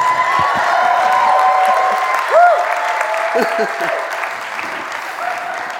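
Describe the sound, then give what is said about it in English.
Steady applause from an audience welcoming a pastor who has just been introduced fills the whole clip, dense and fairly loud, with a few whoops and cheering voices rising over the clapping. “Come on, can we clap for that?”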